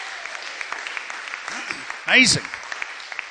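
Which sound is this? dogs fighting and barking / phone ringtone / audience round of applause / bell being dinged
audience round of applause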